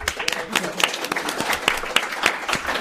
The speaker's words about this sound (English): Someone in the audience started clapping, and then everyone in the audience started clapping. Oh, my God. It was a slow clap, too, and they all... stood up.